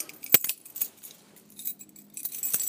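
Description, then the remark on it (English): A ring of keys jangles in bright, metallic bursts as a door is locked on an overcast morning. There is a sharp click near the start and scattered rattles throughout. No one speaks. “There we go. Getting the door done.”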